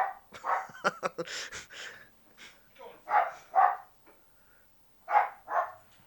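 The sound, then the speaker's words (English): A small female puppy barks loudly. A rapid, scrappy flurry of sharp sounds comes first, then two pairs of full barks separated by short pauses. “Bella's a bad girl, man. This dog is insane”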